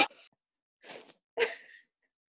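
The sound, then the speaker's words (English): A woman coughs three times in short, harsh bursts separated by brief pauses, the last cough slightly louder and longer, with no talking around them. “And now she's coughing.”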